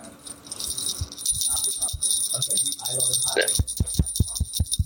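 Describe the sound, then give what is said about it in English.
Small bells jingle continuously, like a cat's collar bell, a bright tinkling shimmer over soft muffled voices and a run of dull low thumps toward the end. “But yeah, they basically sound like a cat bell on like a call.”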